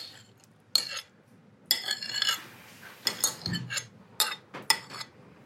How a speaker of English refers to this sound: So pour the sugar bowl of tomatoes into the strainer and do that gentle stir.